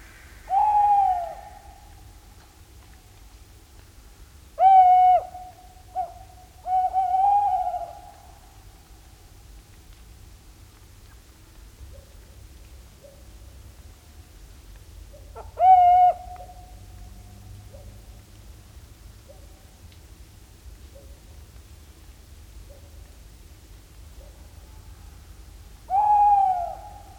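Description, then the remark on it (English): Tawny owls give territorial calls on a foggy morning along the shore of Balham Lake in Northumberland, England, recorded by Chris Watson: a handful of quavering hoots spaced irregularly over half a minute, over a steady low hiss of outdoor background noise. “He captured these territorial calls of tawny owls on a foggy morning along the shore of Balham Lake in Northumberland, England.”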